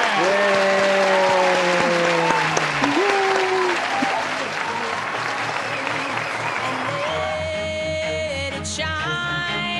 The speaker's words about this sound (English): And let's give a round of applause while we play out music